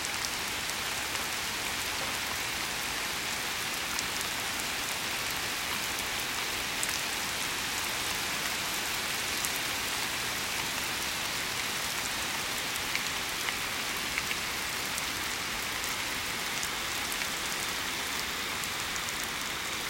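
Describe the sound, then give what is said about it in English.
Very heavy rain pours steadily, coming through a window screen, a dense hiss with fine patter that stays constant and unbroken throughout, with no voices. “it's a good thing I have a screen on this window. Oh no, it's starting to come through the screen.”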